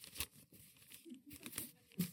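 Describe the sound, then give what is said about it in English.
Rustling and crinkling of the pages of an East Carolinian newspaper being handled, with several sharp crackling bursts over a couple of seconds and no talking. “where's that newspaper? I had a newspaper earlier.”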